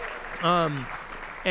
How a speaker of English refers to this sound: They just got married, and they got to sing right here, shoulder to shoulder, husband and wife, and that was fun, right? Yeah, we can cheer that on.